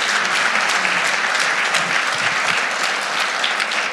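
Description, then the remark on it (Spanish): Loud, sustained applause from a large crowd answering a preacher's call for a loud round of applause, a dense wash of many hands clapping steadily for several seconds with no pauses and no voices standing out. “Si tú lo crees, dar un aplauso fuerte, Señor.”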